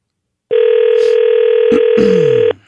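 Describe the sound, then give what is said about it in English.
A loud, steady telephone ringing tone sounds once for about two seconds, then cuts off, with faint rustling noises briefly overlapping it near the end. “Can she answer the phone? This is her one chance.”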